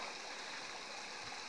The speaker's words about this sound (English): And the water is coming all the way down the street. All the way down, it's starting to... I just walked down here, and now it's going in here. It's probably going to fill this up quick and start flooding the...